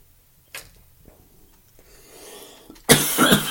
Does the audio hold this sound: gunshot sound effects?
no